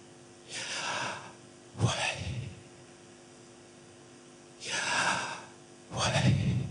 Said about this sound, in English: But the truth is it's inutterable. So they would say, the word is the sound of breathing.